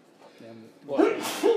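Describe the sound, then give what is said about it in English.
A loud sneeze: a short voiced intake of breath followed by a sharp, hissy burst that trails off as a second rough exhale. “Bless you.”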